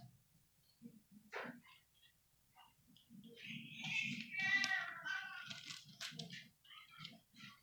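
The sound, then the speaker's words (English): Bible pages turning as people find 1 Peter chapter 3, heard as a stretch of soft, papery rustles and flips from many pages at once that swell in the middle, over a faint low murmur. “I'm going to ask you a question as you turn, because I still hear some pages turning.”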